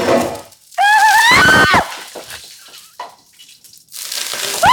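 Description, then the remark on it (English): A hot pan with too much oil, used for frying a tiny quail egg, is plunged into water with a loud, violent burst of hissing and sputtering, edged by a shrill squeal. It dies to quieter crackles, then a second steady hiss rises near the end. “Okay, this is really hot. Really, really hot. Don't put it by water, please. Going into water.”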